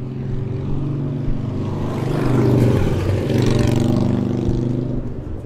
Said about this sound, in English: A motorcycle going between cars during heavy traffic.